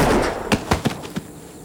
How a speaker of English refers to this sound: And suddenly you realize that it's quiet again. Your ears are still ringing a little bit from all the gunshots and everything like that.